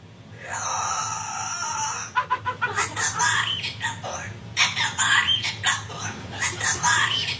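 A cockatoo, just bought from a seller on Craigslist, lets out a long, harsh screech, then breaks into rapid, choppy squawked syllables that imitate a human voice shouting metal song lyrics, loud with no one else talking.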